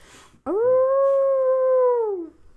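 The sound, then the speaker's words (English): A person imitates a direwolf's howl: one loud, sustained cry that swoops up, holds a steady tone for nearly two seconds, then slides down and fades, with no talking. “And she howls and moves on.”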